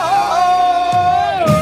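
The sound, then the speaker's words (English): A loud Tarzan yell: one long, sustained high-pitched call that holds a steady note, then warbles and breaks in pitch toward the end, with no talking over it. “My goodness, the Tarzan yell.”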